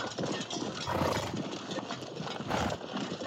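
A herd of armored horses charges in formation up a beach, hooves pounding in a dense, rapid rhythm with occasional snorts, loud and continuous for the whole stretch with no one talking.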